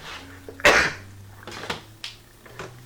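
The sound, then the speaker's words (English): A single loud sneeze bursts out, followed by a few softer, breathy sounds trailing off over a low steady background hum. “Bless you. Those are one more.”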